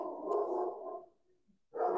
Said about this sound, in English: They don't bark that many. They don't bark that many times. My dogs do not bark that many times throughout the entire day. A few times, maybe.